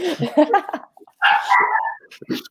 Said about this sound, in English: Oh, there goes the dog.